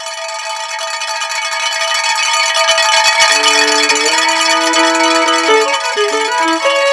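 A cowbell rings loudly and steadily with a bright metallic shimmer, joined partway through by a lower melody that steps between notes. No one speaks.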